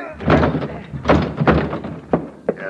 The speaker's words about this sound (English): Crash the door, Logan. Crash it.